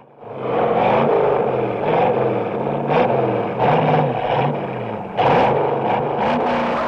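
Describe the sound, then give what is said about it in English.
A powerful 1968 Ford Mustang engine revs hard, its throaty roar rising and falling in repeated surges with a rough mechanical clatter underneath, no voices present. “who grew up with the Ford Mustang from the 1968 film Bullitt sitting in the family garage”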